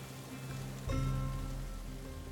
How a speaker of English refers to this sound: He smiles as the thunder rolls behind us.